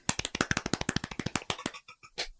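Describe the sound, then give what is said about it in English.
A soft golf clap: quick, light hand claps, around a dozen and a half in a steady rapid rhythm that slows and trails off at the end, with no voices. “Golf clap.”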